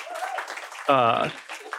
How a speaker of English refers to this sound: Round of applause, thank you.